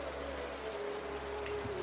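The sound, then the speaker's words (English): Steady rain falls with a dense, even hiss and soft patter, holding at a constant moderate level throughout, while a faint sustained tone hums in the background. No voices are heard. “Yeah, the rain picks up as the group of you kind of file in.”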